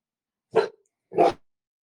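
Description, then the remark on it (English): A dog on patrol for bobcats barks twice, two sharp, separate woofs about half a second apart, clear against an otherwise silent background, on a windy day. “And I got the dog on patrol, making sure there's no bobcats around.”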